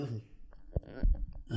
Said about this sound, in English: If I have something in my throat, I'm going to cough. I'm sorry. You do this every episode. Because there's something in my throat.